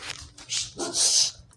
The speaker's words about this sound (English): I'm sorry, my dog is barking like a butthead. Hold on.